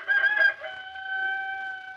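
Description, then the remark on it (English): A rooster crows once, a loud, strained cock-a-doodle-doo that rises sharply and then holds a long, steady, wavering note before fading, heard alone with no voices. “Where there's a rooster, there's people.”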